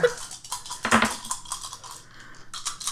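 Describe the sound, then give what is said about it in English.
A handful of dice rolled during a game clatter across a hard tabletop, a dense burst of quick clicks and rattles that peaks early, then scatters into lighter tumbling taps, fairly loud with no one speaking. “You have so many dice.”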